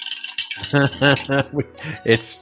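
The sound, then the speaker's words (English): A gin and extra dry vermouth cocktail being stirred over ice until really cold, with light clinks and rattles in a glass, while a voice makes short rhythmic humming bursts over the stirring. “Right, I'm going to stir that till it's really cold.”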